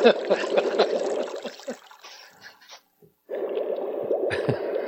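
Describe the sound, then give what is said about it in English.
Wet gurgling and squishing of water leaking in the Seaview, fairly loud, breaks off into near silence for a moment before the bubbling, sloshing flow resumes. “It sounds like the sea view's got leaked.”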